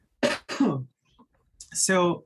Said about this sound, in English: Excuse me, I'm just going to cough for a second.